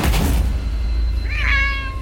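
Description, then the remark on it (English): A single clear meow from a small black cat, rising then trailing off, following a brief burst of muffled noise at the start over a low background rumble. “There's a small black cat now, like, prar. Yeah. Meow.”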